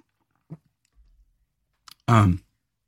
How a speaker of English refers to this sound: Let me take a sip, you guys.